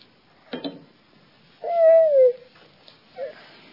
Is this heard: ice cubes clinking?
no